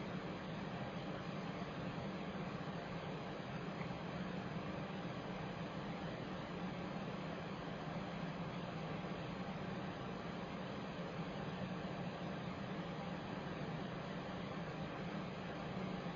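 A furnace runs without pause, a steady breathy whoosh with a low hum beneath it, quiet and unchanging from start to finish, with no voices.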